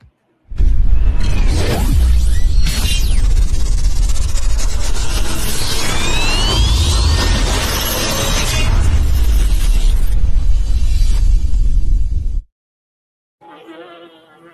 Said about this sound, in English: The bees sound like flies. You could give me a better. I did Google bee sounds. This is a Google of bee sounds.